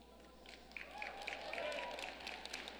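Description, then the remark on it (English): Faint, scattered applause from an audience: a thin patter of claps that swells slightly partway through and stays weak and unenthusiastic, with no voices over it. “That was a shitty ass clap.”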